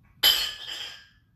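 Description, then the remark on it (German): Dishes clink together in one sudden, loud clatter as dishes are being brought, with bright, ringing overtones that fade away over about a second. No voices. “Ja, hör mal auf, das Geschirr zu bringen.”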